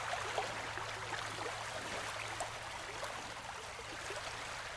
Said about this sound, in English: Sometimes the raindrops fall so softly they can barely be heard.